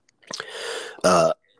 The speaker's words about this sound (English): excuse me, because you're going to probably hear me cough up a lung and stuff every once in a while.